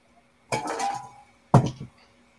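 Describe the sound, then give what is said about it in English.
A physical die is rolled: a rattling clatter lasting under a second, then a sharper clack with a brief tumble before it settles. Both bursts are fairly loud, with no talking. “I'm going to roll a physical dice for this.”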